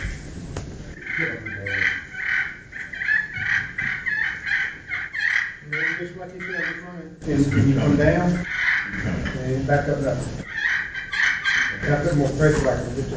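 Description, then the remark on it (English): A turkey purr worked on a slate call: a steady stream of raspy, rolling, fluttering notes running for about thirteen seconds, fairly loud, with brief voices mixed in at times. “Could you run that plate purr again real quick on the slate call?”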